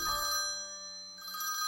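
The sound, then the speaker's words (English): A special hotline telephone set up for a criminal case rings with a bright, trilling electronic bell, one short burst heard clear, with no voices over it. “A special hotline for the case had been set up, and that phone began to ring.”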